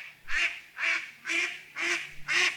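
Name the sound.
duck quacking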